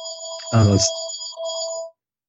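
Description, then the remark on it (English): A landline house phone rings at home with a steady electronic trill that carries through most of the moment, and a brief voice cuts in over it before the ringing stops. “That's my house phone ringing.”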